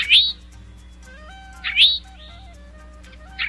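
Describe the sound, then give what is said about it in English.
An eastern towhee (Pipilo erythrophthalmus) gives its chewink call three times at steady intervals of under two seconds, each a bright, rising slurred note, over a soft background of low sustained tones. “That was a call that has earned the bird another nickname, the chewink.”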